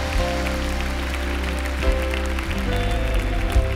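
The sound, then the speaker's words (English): A church audience applauds steadily for everyone making a decision to follow Jesus, a dense wash of clapping throughout, with sustained low musical tones playing underneath and no talking. “Let's give a big hand clap to everyone today that's making a decision to follow Jesus.”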